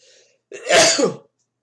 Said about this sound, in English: Excuse me, I'm sneezing.